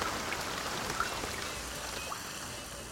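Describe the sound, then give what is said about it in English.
Steady rain sounds in an immersive store display with umbrellas, a dense hiss of drops with occasional individual splats pattering on a surface, continuous and fairly even in loudness. “I love the sound of the rain and the voices.”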